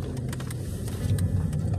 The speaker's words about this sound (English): But I did this entire podcast in my car while driving back home.